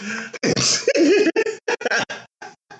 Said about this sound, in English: Cough.